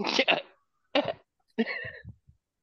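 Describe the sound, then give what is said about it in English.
A person imitates a lion's cough: three rough, breathy bursts spaced about half a second apart, the last trailing into low grunting stutters, fairly loud with no talking. “That cough that lion did.”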